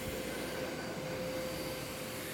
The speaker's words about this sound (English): Uh-oh, this vacuum cleaner is actually making a bigger mess than it is cleaning up.